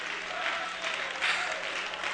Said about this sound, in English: Let's all stand and give the Lord a hand clap of praise.